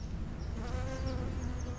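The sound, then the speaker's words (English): A bee buzzes in the blossom of an almond tree by the side of a road, hugging the stamen and wiggling around, a steady droning hum with slight wavering pitch, with faint outdoor ambience and a few soft high chirps in the background. “I don't know if you can hear it, but a bee is basically hugging the stamen and wiggling around, and that's it. It flew away.”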